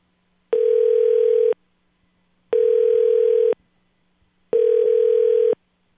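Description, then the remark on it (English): A telephone line tone plays while on hold for the receptionist on a call to a Days Inn hotel: three steady one-second beeps separated by one-second silences, clear and evenly paced, with no voices. “That extension is unavailable. Please hold for the receptionist.”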